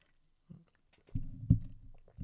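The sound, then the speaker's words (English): Someone takes a sip of a drink: a soft low thump, then a run of muffled gulping swallows with a sharper gulp in the middle, faint wet clicks, and no talking. “But yeah, sorry, I just had to take a sip of my drink.”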